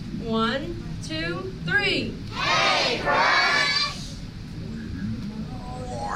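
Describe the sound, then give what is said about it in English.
A crowd of children yells together in unison, calling "Hey, Crush!" on the count of three: a few rising, excited shouts at first, then a loud, sustained group cheer lasting a couple of seconds before trailing off into murmuring. “So on the count of three, I want everyone to yell, "Hey, Crush!"”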